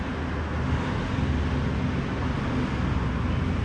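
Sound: city traffic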